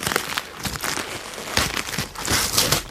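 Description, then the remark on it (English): Paper crinkles and rips in irregular bursts as gift wrap is torn open on a present holding a Subway gift card, a busy, bright rustling that swells in louder crackling surges toward the end, with no voices. “So, why don't you open this next one? It's got your name on it.”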